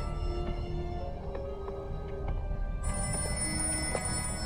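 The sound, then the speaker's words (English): A telephone bell rings continuously, a steady metallic jangle that persists for several seconds at moderate volume over a low background rumble, with no voices. “Captain, the ringing is getting worse.”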